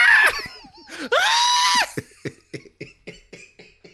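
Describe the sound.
A man imitates another man's shrill, high-pitched scream in two loud, strained bursts, then trails off into a quick series of short, rhythmic gasping yelps.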